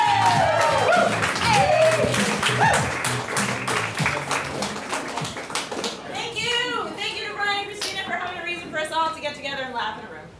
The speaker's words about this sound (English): Crutch Improv is going to come up. And if we could give a round of applause for these guys, because we love them so much. Everybody, Crutch Improv.